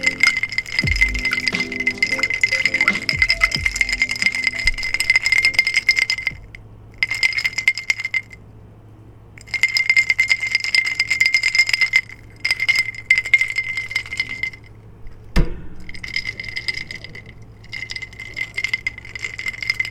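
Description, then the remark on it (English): Ice rattles and clinks against a glass of water in repeated bursts of jangling, stopping and starting several times with short silent gaps, punctuated by a few sharper knocks and taps. “This is ice and water and a glass.”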